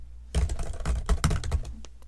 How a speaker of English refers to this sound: I have no words. Must bang head on keyboard until words come.